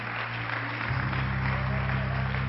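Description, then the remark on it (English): A crowd claps hands steadily in praise of God, a dense, continuous patter of applause with a low hum underneath and some voices mixed in. “Now why don't you keep clapping those hands and lift up your voice and praise God along with the hand clap today.”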